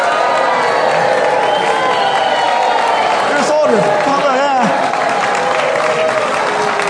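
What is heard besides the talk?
crowd cheering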